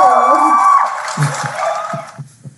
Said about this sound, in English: Definitely getting a round of applause for that.